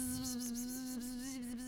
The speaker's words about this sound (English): A hive of bees.